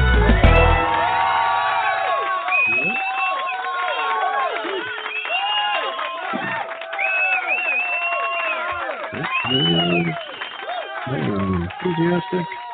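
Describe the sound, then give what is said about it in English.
A lively crowd cheers and whoops continuously, with many overlapping voices, while shrill whistles rise above the din several times. “Good crowd. I thought about it, and I think that the person that's whistling is the bus driver because he's there every week.”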